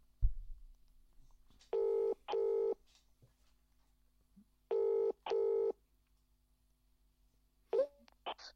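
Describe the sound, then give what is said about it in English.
A phone line rings through the earpiece: two double-burst ringback tones, evenly spaced and fairly loud, followed by a short click-like noise as the call seems to connect. “It's ringing.”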